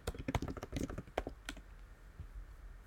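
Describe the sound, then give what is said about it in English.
Rapid clicks of typing on a computer keyboard while looking something up, a quick irregular burst of keystrokes in the first half that thins to a few scattered taps, fairly quiet with no voices. “Excuse the typing sound, everyone.”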